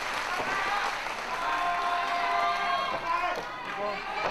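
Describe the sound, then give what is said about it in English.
A large crowd at a wrestling match applauds steadily, a dense wash of clapping mixed with cheers and voices, with a commentator-like voice talking over the noise throughout. “Ah, and the crowd is happy.”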